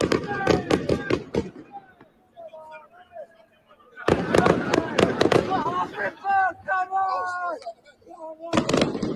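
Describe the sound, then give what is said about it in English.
Rapid clusters of sharp, crackling bangs like fireworks and flares going off, in three loud bursts, with shouting voices in the gaps between them. “We wouldn't want, like, you know, fireworks or, you know, flares gone off at the Emirates.”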